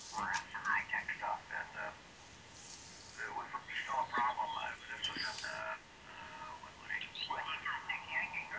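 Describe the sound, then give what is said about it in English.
An amateur radio shortwave receiver is tuned down across the low end of the phone band during contest activity, with garbled, warbling sideband voices popping in and out over a steady hiss of static, fairly loud and continuous. “That's on the low end of the band. And it goes all the way down. I cover the complete phone band.”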